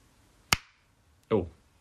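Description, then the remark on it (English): One sharp, loud hand clap, the third clap made before beginning a recording, rings out with a short fading tail, followed moments later by a brief burst of a person's voice. “So this is going to be the third clap, and this is going to be the one for real.”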